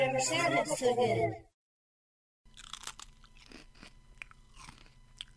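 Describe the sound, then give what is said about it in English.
A brief voiced sound fades into a second of silence, then crunchy mukbang-style eating follows, with irregular crisp bites and wet mouth clicks at a moderate, steady level. “They call it what? Mukbang. And it's when you're chewing.”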